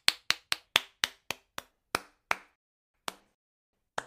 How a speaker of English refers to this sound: Bob Cratchit applauds.